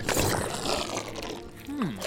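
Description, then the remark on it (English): Wet, sloppy squelching of a lumpy gelatinous mass of gelatin blocking a road, a steady run of thick slapping and sucking noises that stays fairly loud throughout, with a brief falling squeal near the end. “No, it sounds more like slapping a soaked shirt on the ground over and over.”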